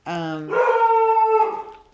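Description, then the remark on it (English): A dog named Scott lets out a long, sustained howl that starts on a lower steady note, then jumps to a higher, wavering pitch and holds it before trailing off, loud and alone. “Bark further away. Feel free to continue barking”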